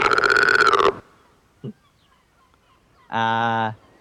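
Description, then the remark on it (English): A voice imitates a loud croak: a long, raspy, throaty call, a tiny grunt, then a second shorter, buzzy croak after a pause, with no other talking. “It croaks loudly.”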